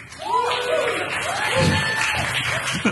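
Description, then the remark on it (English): An audience claps steadily for about three seconds after the film Pulp Fiction is named, a dense, even wash of applause with a few voices calling and cheering over it. “I think they're clapping more for the movie than for you.”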